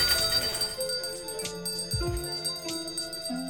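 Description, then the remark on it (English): A volunteer's charity hand bell rings steadily at City Market during the Christmas season, its bright metallic tone overlapping crowd bustle and a few low thuds, with no clear speech. “spending time with us during one of her bell-ringing shifts at City Market.”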